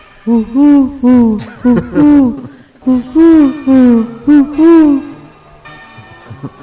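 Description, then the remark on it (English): A Eurasian collared dove coos a soft, hollow three-note phrase, then repeats it after a short pause. The calls are fairly loud, with faint background hiss at the end. “The call of the Eurasian collared dove.”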